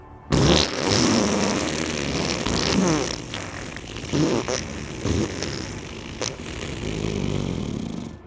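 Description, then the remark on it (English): A long, loud fart noise rumbles on for about eight seconds, sputtering and wavering in pitch with a few brief dips before trailing off, with no talking. “… rips out an 8-second fart”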